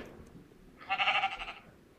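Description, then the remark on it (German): A single sheep bleat from a video game, a wavering, nasal baa lasting under a second, heard clearly on its own against a faint background hiss. “Und die Erfahrungspunkte bei erwachsenen Schafen, wenn du sie tötest, sind 1 bis 3. Es gibt auch jetzt ein Geräusch, nämlich”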